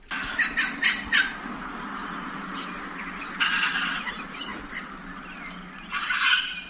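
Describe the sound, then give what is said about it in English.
Harsh, raspy wattlebird calls burst out in loud clusters in Australia, a run of quick squawks at the start and more chattering bursts later, over a steady outdoor background. “These are called wattle birds here in Australia.”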